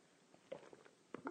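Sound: sipping coffee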